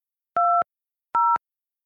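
Two telephone keypad tones sound in sequence as a PIN is entered for a Telelink Conference Pro conference call, each a steady, dual-pitched beep lasting about a quarter second, separated by a short pause, with no voices.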